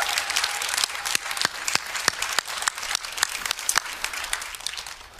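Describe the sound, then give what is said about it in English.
An audience gives the Lord a clap of praise, clapping together in a dense, steady wash of applause, with a few sharper individual claps standing out over the texture for about five seconds, no voices heard. “Come on, give the Lord a clap of praise.”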